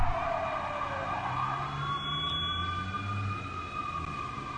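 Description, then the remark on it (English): A wailing emergency siren sweeps up and down steadily outdoors, with a low traffic rumble underneath and no one speaking. “There's the siren.”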